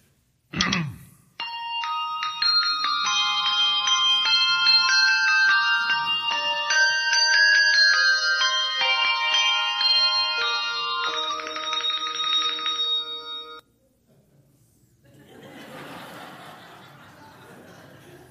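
A bell choir in a Hershey's Kisses TV commercial plays a bright Christmas melody: clear ringing bell notes overlap and sustain for about twelve seconds, then stop abruptly, leaving a soft, breathy rustle like quiet chuckling.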